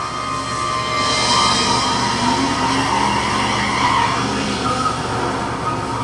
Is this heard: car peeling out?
yes